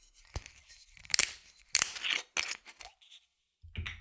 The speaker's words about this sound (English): Okay, so let's open it up. Brand new bottle. Metal screw cap, just crack it open.